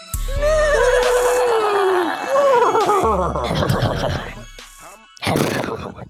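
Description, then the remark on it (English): A loud horse whinny with a high, quavering pitch that slides downward over about two seconds, followed by rougher fluttering neighs and a brief snorting burst near the end. “It's a certified horse classic.”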